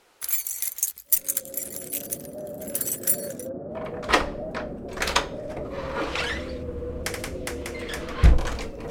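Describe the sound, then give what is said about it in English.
Bright metallic jangling and clinking, like a ring of motel keys from the manager being shaken and handed over, comes in several bursts over a steady low hum, fairly clear. “Well, I guess since you're all cops, here's the keys.”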